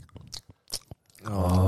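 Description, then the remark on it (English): A voice imitates someone sitting behind on a train noisily chewing on a lolly: a few wet, clicky smacks and crunches, then a loud drawn-out groan-like smacking sound at the end. “I guess going to uni on the train, when you've got someone sitting behind you chewing away in a lolly.”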